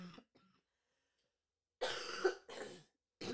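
cough

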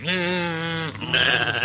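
sheep bleating

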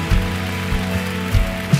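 round of applause

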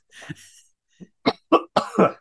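person coughing

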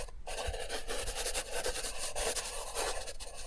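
pencil drawing on paper

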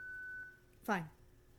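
electronic beep

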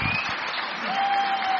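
round of applause

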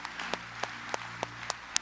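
audience clapping

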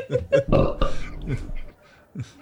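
belch

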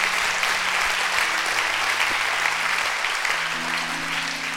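audience clapping hands

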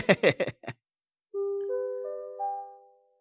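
school bell ringing

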